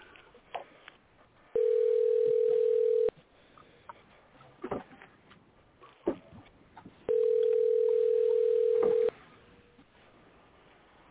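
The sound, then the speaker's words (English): A telephone call being placed: a phone line rings twice with two long, steady, low-pitched ringback tones separated by a pause, with faint clicks and line noise in between. No one speaks. “All right, let's call them live on the podcast here and see what's going on here. All right, call them up.”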